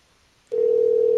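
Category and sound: signal or alarm, telephone dial tone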